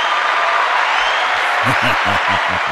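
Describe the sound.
A steady, dense round of applause fills the whole moment, fairly loud and close, with a few low rhythmic thumps or voices rising near the end.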